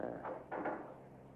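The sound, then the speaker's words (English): A heavy fire door swings shut, giving a short sequence of dull, muffled clunks over a second or so, with no voices present. “Till I close the fire door.”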